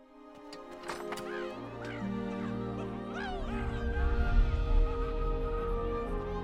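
A goose honks several times in quick, uneven bursts, its calls rising and falling over a steady low droning background that grows louder toward the end.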